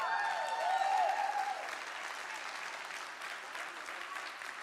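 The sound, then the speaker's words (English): An audience applauds steadily for several seconds, a dense wash of clapping that stays fairly even in loudness, with a brief high whistle or cheer rising over it near the start. “But yeah, I can clap too”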